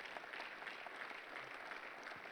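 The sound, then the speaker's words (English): Steady applause from an audience at a camp, a dense wash of many hands clapping at an even, sustained loudness with no voices heard over it. “And I know, give them a round of applause.”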